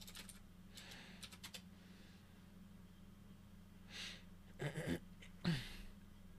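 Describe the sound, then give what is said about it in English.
Soft clicking of a computer keyboard in short, irregular bursts of keystrokes separated by pauses, over a low steady hum; no one speaks and the typing stays fairly quiet. “I almost said his name typing it out.”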